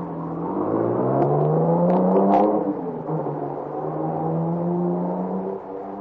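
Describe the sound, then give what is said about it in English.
A car carrying four men revs up with a rising, whining pitch, then settles into a steady drone as it pulls away through a village, loud throughout with no voices. “They all pile into the car and take off through the village, supposedly after me.”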